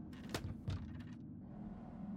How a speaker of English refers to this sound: No, that's the door we keep locked. Tim pulled the door closed and fiddled with the old handle.